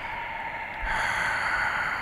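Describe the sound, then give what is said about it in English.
A heavy, hissing breath blown straight into the microphone, swelling louder partway through and holding as a steady rush of air, with no talking. “Yeah, I was gonna say somebody's like breathing hot air on you.”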